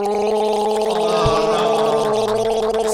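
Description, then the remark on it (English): A person gagging loudly and continuously, a strained, throaty retching with a wet, gurgling rattle and a steady voiced drone, and no words spoken. “That's one thing he's good at. It's gagging on things.”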